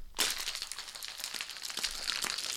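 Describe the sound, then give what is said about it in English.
Ice rattles hard inside a cocktail shaker, a bright, steady clatter with rhythmic jolts as it is shaken continuously for a couple of seconds, with no talking. “We got this mixed together. Let's give it a good let's give it the old shake.”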